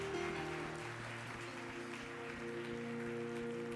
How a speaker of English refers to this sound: Would you give the servant of the Lord a God bless you applause?